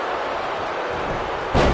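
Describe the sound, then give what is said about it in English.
A steady roar of crowd noise at a wrestling match, then near the end a single loud, heavy thud as the wrestler Hawk sweeps his opponent off his feet with a leg sweep and slams him onto the mat. “Hawk with the leg sweep.”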